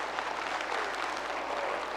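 Steady applause from a gathered crowd fills the space, a dense wash of many hands clapping at once, sustained and even throughout with no voices standing out.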